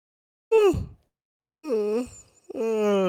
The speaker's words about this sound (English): I'm gonna hopefully just make all the five people listening react by yawning just then.